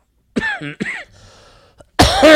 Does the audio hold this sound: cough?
yes